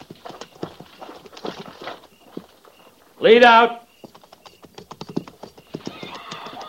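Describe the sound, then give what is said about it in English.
Several horses walk in pairs at a walk with steady clip-clopping hooves throughout, broken midway by one loud, brief whinny. A man's voice calls out brief riding commands over the hoofbeats. “Prepare to mount. Mount. Forward. By twos. At the walk.”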